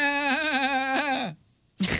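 animal, goat bleating

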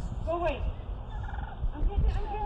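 bird, wild turkeys gobbling

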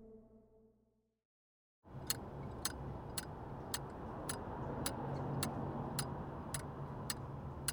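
household object, metronome ticking

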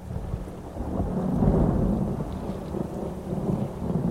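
nature, thunderstorm with rain

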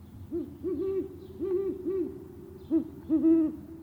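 bird, owl hooting

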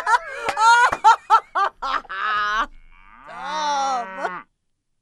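sound effect, cow mooing sound effect

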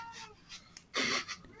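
animal, cat meowing

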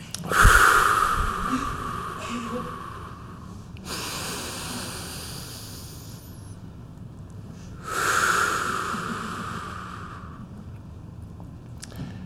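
human body sound, breathing

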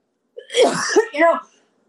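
human body sound, coughing

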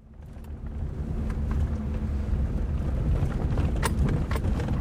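vehicle, four-wheel drive truck driving

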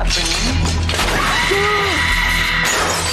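impact, glass shattering

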